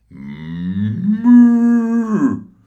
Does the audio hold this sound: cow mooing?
yes